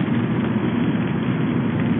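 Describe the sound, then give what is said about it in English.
A steady, continuous hiss and rumble of car tires rolling over a wet road in West Virginia in the rain, heard from inside the car with a low engine drone underneath; the wet wiper blades make no squeaking, and there are no voices. “There's wetness under the tires.”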